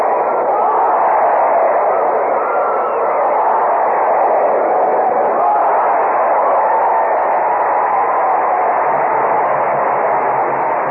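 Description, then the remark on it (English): An actual recording made in a bullring during an afternoon bullfight: the crowd roars and cheers with shouts of olé, a dense, steady wash of many voices that holds at the same loud level for about eleven seconds, sounding muffled and thin. “That was an actual recording made in a bull ring, and you could tell it was one heck of a card they were having that afternoon.”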